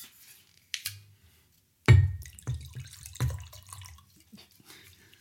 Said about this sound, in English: Okay, I'm going to just pour this wine.